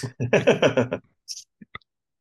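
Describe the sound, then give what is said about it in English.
A short murmur of voice gives way to dice landing on a table: a brief high clatter followed by two quick, sharp clicks, fairly quiet. “Oh, no, these dice, now that the 30 looks like a 90, that's a 39.”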